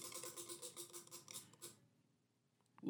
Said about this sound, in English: So we're going to give the wheel a spin and see what we watch on episode 95.